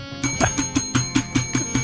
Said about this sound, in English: Hand me that thing to your in your left hand, right there. Right here. You need to hit the bell every.